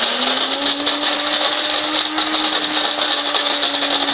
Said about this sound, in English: So here we go, grinding up the beans. And there we go.